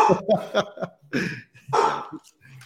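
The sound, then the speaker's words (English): A dog barks in a quick cluster of short yaps, then two longer, louder barks, set against faint background noise. “Forrest's dog is going crazy”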